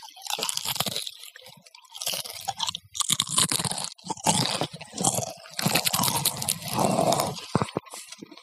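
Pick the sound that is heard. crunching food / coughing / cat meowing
crunching food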